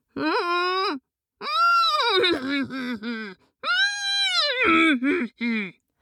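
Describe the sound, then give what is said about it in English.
A person imitates a horse's neigh with closed lips as an alarm cry, producing three loud, wavering, nasal whinnying cries in quick succession, each rising and falling in pitch, with no talking. “Kind of a horse's neigh, but with his lips closed.”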